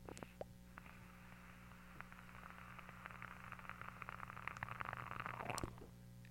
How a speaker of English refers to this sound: I'm going to put this up to the microphone. I want you to see if you can hear the crackle that I'm getting from this Duchess mouth to lung alien in here, because it's delightful.